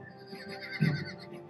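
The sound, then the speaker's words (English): A frightened horse whinnies, a short, shrill neigh with a brief loud burst partway through, heard on its own without any talking. “the horses are getting very scared.”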